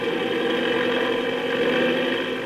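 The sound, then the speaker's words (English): A steady, droning engine roar of propeller planes taking off for reconnaissance, with a whirring, buzzing tone that holds constant and fairly loud throughout, no voices present. “Gee, those propellers sure stir up the wind.”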